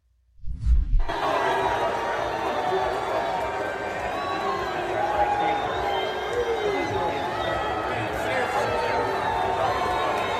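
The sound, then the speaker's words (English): A large crowd at an Iowa football game roars continuously, a dense mix of booing and cheering aimed at a visiting man going down into the stands, swelling in after a brief low thump at the start and holding loud and steady to the end. “He also went to the Iowa football game, and there was a bit of online controversy that broke out over whether he was being booed or whether he was being cheered.”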